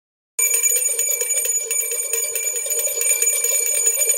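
two bell rings

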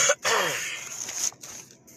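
coughing

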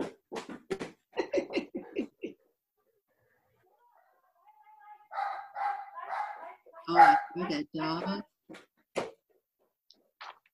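dog barking

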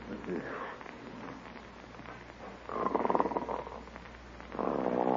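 snoring

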